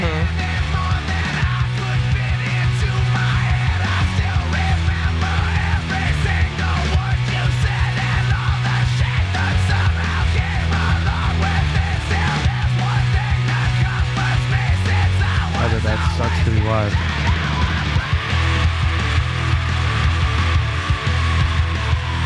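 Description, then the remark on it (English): A rock singer screams raggedly over loud, dense distorted guitars, pounding drums and bass, the raw yelling vocal sustained across the whole stretch of the song with no speech. “That's a straight up fucking scream.”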